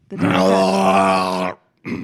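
A single loud, drawn-out sneeze with a strong voiced, groan-like tone that holds steady for over a second before cutting off, then a brief pause and the onset of another sound. The sneeze is put down to allergies acting up, and it is the second sneeze.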